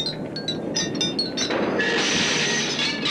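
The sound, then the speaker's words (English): Glass shatters: a few sharp clinks and tinkles, then a bright, sustained crash of breaking glass that rings and scatters for over a second. No voices. “And now it's shattered glass.”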